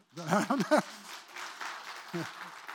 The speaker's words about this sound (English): You're clapping for yourselves. Good job.